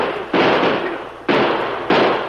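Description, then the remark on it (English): Three loud gunshots ring out at uneven intervals as men shoot at a fleeing horseman. Each is a sharp crack followed by a long, hissing decay that fades before the next. No one speaks. “Shoot at him, boys.”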